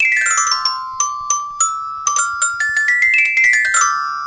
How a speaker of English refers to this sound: Fun fact, that's actually Inspector Perot's ringtone. That's what it is. Yeah. That is, of course, the improv theme for games.